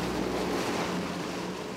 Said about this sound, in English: And I remember the water looking and sounding different. It was heavier in this portion, where the reservoir water meets the river water.